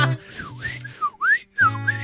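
A person whistles a few short, breathy phrases, each pitch swooping down and back up in quick slides, with airy hiss around the tone and a low steady hum underneath.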